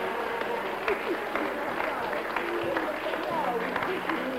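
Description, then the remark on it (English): An audience claps steadily for several seconds, a dense, even wash of applause with some voices and cheers mixed in the crowd noise. “Give her a clap.”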